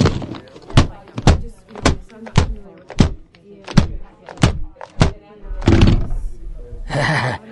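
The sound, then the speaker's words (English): A keyboard is slammed against a desktop again and again: about nine loud, hard thuds in a quick, slightly uneven rhythm, then a longer rattling clatter of plastic at the end. “Oh, but first, I forgot my morning ritual of smashing my keyboard on the desktop.”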